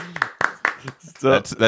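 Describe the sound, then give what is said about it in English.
Four sharp hand claps land at a steady, even pace, followed by a voice speaking over the end of the clapping. “Can we get a slow clap going here?”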